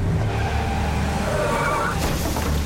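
A car skids with a rising, whining tire squeal over a loud, steady engine roar, continuous for a few seconds before a harsher burst of noise near the end.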